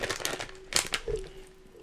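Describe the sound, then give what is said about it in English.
Crinkling of a plastic gummy worm candy bag: a quick run of sharp, crackly rustles, loudest in a burst partway through, then fading into a quieter, sparse crackle. “Would anybody like a gummy worm? Let me get one of them.”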